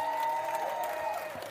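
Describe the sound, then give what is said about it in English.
A crowd applauds college graduates steadily, a dense wash of many hands clapping at once that holds at an even, fairly loud level throughout, with a faint hum running underneath. “And again, to our college graduates who graduated, give them a round of applause.”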